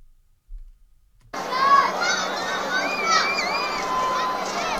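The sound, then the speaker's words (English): A crowd of Palestinians cheers and shouts along the beachfront in Rafah, southern Gaza, as they receive aid packages dropped from the air, after a short silent start, many overlapping voices forming a dense, steady roar with higher excited calls rising above it, continuing loudly to the end. “A crowd of Palestinians can be heard cheering along the beachfront as they receive air packages from international partners today.”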